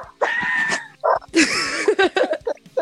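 A dog lets out a drawn-out whine, then a flurry of short, high yelping barks and whimpers in quick succession, loud and agitated.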